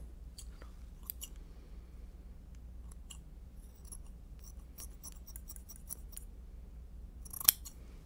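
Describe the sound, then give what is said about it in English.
Scissors snip repeatedly in short, crisp bursts, with a sharper, louder cut near the end over a low steady background hum; no one speaks. “Let me make sure it fits okay. Scissors.”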